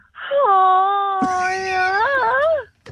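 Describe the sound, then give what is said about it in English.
A caller on a radio show imitates a stag's roar on air with one loud, drawn-out vocal bellow lasting over two seconds, holding a steady mid-pitched tone that wavers and dips before breaking off. “The time we got people on-air to do stag "roars"”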